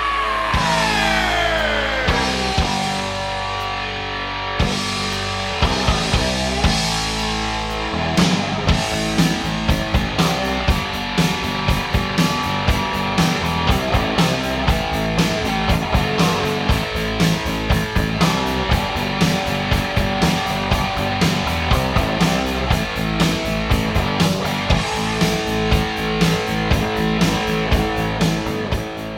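A loud 1980s heavy metal song opens with a descending guitar slide over sustained distorted chords, then pounding drums kick in with a steady, driving beat under thick, crunching guitars.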